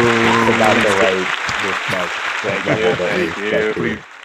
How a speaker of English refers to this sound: Everybody, please. He'll put in some applause here.